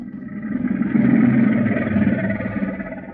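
A couple of crocodiles roaring: a deep, throaty, rumbling growl that swells after the first second and holds steady and loud for about three seconds, with no talking.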